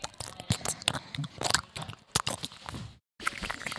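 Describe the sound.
A person imitates a lizard licking with their mouth: a rapid, irregular run of wet smacking and slurping clicks, fairly loud, with a brief pause before the slurping resumes.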